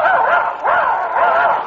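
A person imitates a dog, letting out three loud, voiced barks and yips in quick succession, each a strained, whiny yelp with no real dog present.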